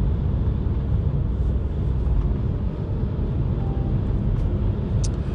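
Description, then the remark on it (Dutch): Steady, loud rumble of road traffic, a continuous roar of engines and tires as vehicles pass and merge, with no voices. “Oh, even invoegend verkeer.”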